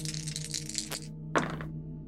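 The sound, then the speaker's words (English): Dice, an action die and two challenge dice, are rolled in a game: they rattle in a continuous clatter for about a second, then land with a sharp, bright clack and a brief skittering tumble before settling. A steady low hum runs underneath, and no one speaks. “So Arid, I think, is going to take back the lead, and we're going to roll plus three on this.”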